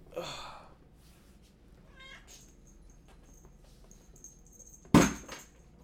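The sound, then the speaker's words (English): A cat named Benny meows while its owner coaxes it, one drawn-out meow at the start and a shorter, quieter one a couple of seconds later, followed near the end by a sudden loud knock or thump. “Trying to be nice to my cat here.”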